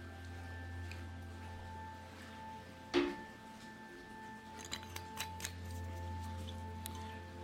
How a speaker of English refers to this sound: Now, the Swing is 43% alcohol by volume, which is 84 proof. Let's go ahead and pour a glass. And unfortunately, this is a screw top.